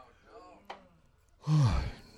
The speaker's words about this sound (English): Now I want to yawn. Anybody want to yawn? Let's just all, everybody on the count of 3. Ready?